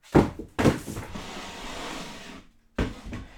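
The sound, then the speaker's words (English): Chairs being moved into an attic studio thump down twice, then a long scraping drag across the floor before a brief pause and another knocking clunk, with no talking. “Are those chairs?”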